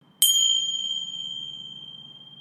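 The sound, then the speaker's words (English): A single bright bell chime, signalling a quick break, strikes cleanly and rings out with a long, slowly fading sustain, heard alone with no voices. “That bell was just to alert you that we're going to take a quick break so I can tell you about the different ways to listen to and engage with this podcast.”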